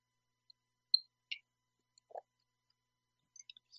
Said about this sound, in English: Excuse me, I have a sip of tea.